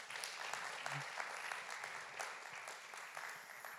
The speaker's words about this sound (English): They help set up. They help set down. They're just amazing at getting involved, being servant-hearted. And I think that's only going to grow, which is just fantastic. So round of applause for you guys again.